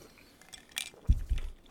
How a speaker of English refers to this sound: Go ahead. Take a sip.